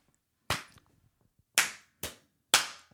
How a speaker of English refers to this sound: We might have to get another clap, actually, too. You ready?